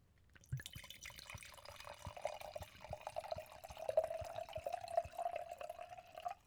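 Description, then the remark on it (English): A 2019 smooth, full-bodied California wine glugs and splashes steadily into a glass, with a rising tone as the glass fills to the brim over several seconds, no one talking. “All right, hit him with the pardon pour.”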